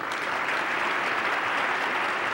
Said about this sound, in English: That applause came from both sides of the partisan aisle.